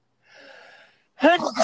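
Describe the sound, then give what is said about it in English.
A soft, stifled sneeze comes out as a short breathy hiss. After a brief silence, someone starts talking, noticeably louder than the sneeze. “Bless you.”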